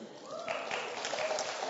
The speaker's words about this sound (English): Now, you just clapped because I made that point. Okay, you didn't really mean that.